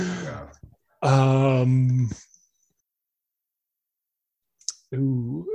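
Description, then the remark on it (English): A voice mimics Xhosa, a click language spoken in South Africa, with sharp tongue clicks mixed into drawn-out, wordless voiced sounds. The bursts are fairly loud, separated by a couple of seconds of near silence. “I don't know the name of it, but it's that clicking language.”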